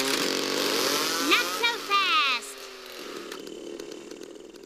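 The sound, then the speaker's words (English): A chainsaw about to cut down a tree roars, revving in quick rising and falling bursts for a couple of seconds before dropping to a lower, rougher idle that keeps running underneath. “Gentlemen, start your chainsaw.”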